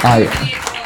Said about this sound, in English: Yeah, round of applause for our actors, please.